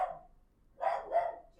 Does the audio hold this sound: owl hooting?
no